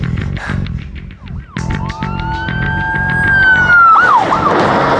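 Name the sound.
ambulance siren wailing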